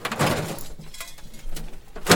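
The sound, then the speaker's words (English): A door being jimmied open with a bobby pin: irregular scraping and rattling bursts, with a louder clatter near the end, and no voices. “pulls out a bobby pin and jimmies the door open.”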